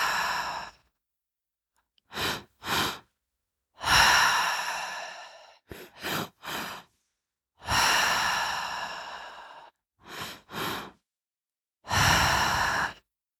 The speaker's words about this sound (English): When you're ready, we'll go ahead and start the breath pattern. Into the belly, into the chest. Long exhale out.